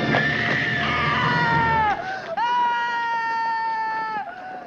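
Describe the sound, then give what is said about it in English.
A woman's loud, high-pitched scream in a film scene rings out continuously, wavering and dipping briefly before surging again, shrill, with no other voices. “It seems very raw and real, and then she, like, screams at him and stuff.”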